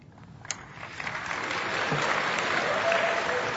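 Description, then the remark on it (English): Audience applause swells from a scattered start into steady, dense clapping that holds loud and even for several seconds, with no clear talk over it. “The applause are for me because I won in that deal.”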